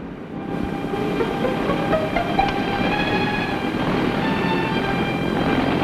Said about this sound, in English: The Huey takes off like an angry hornet. These choppers aren't in the same speed class as jets, but don't get the idea they can't go places in a hurry. They can climb, too. And skim close to the ground like no other aircraft can.